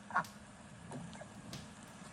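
A single short duck quack sounds near the start, followed by faint scattered clicks and rustles against a quiet outdoor background on a driveway in the morning.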